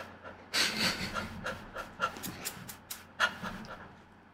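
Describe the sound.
A voice imitates dogs mating with rapid, heavy panting: a quick series of breathy huffs, loud, about eight to ten bursts in an uneven rhythm that trails off toward the end.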